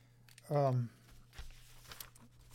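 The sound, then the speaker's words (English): A short voiced exclamation, then paper, having been put down on a pair of glasses, rustles and crinkles for about a second in soft, scattered bursts over a quiet steady hum. “Oop, put the paper on them.”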